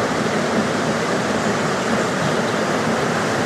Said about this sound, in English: Probably hear a weir behind me.